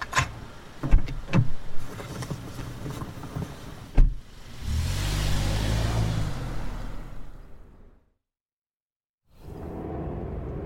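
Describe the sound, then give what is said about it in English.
A taxi cab door thumps and clicks, then the engine hums steadily with a low rumble before cutting to silence, and road noise resumes as the taxi drives on through heavy evening traffic. No one speaks. “Come on, hop in. But I can't guarantee you getting anywhere fast this evening, pal. Traffic's a nightmare.”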